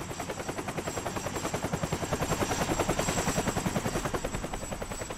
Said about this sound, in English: We also had the use of the Coast Guard, and they flew over the mountain and we were talking to the guys on the phone. They could hear the helicopter and they couldn't see it, and they had a really high-powered search lamp, but it couldn't penetrate